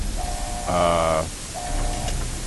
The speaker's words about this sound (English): So the pod is, that hissing noise is the pod sort of deactivating. It's opening.